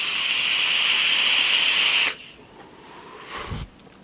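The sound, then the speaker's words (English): A steady, bright hiss of a vaporizer as its coil fires and sizzles the juice just dripped into it, holding for about two seconds before cutting off, followed by a brief soft thump. “Let me drip some juice in there.”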